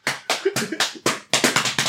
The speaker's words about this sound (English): Please stop slapping my girl. Why they're all slapping each other's behind?